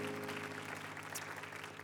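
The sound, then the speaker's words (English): An audience at Calvary church claps their hands for the leadership of the church and school in a dense, steady burst of applause that stays loud and continuous throughout, with a faint low hum underneath and no voices standing out. “Can we just give the leadership of this great church and the school a hand clap?”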